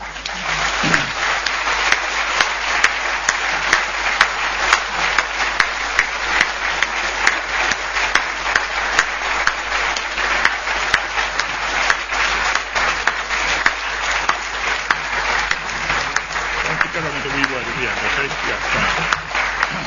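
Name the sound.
lecture audience applause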